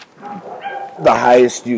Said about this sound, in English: My dogs are barking in the back.